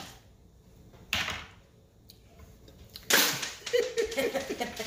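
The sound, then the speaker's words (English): Dice thrown onto the floor for an intelligence check in a tabletop role-playing game, landing on a 5: a brief sharp clack, then a louder clatter followed by a run of quick rattling bounces that gradually settle, with no voices. “Listening at home, I just threw the dice on the floor.”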